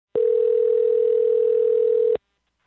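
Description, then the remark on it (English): A single steady electronic phone tone holds at one pitch for about two seconds, then cuts off cleanly into silence, one burst of ringing heard down the line as a journalist calls a family. “their phone number is easily accessible, so I gave them a call, and honestly, I didn't know what to expect.”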